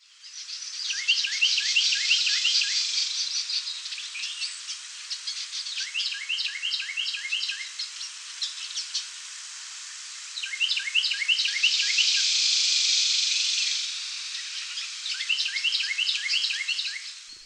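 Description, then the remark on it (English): A Carolina wren pair duets: the male's bright, rolling chirped 'tea kettle' phrases repeat in four bursts, with the female's harsh buzzy rattle call joining midway. No voices, just steady, fairly loud birdsong throughout. “They do this duet call, which is so cool to hear.”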